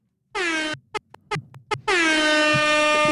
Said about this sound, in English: Terry likes the air horn.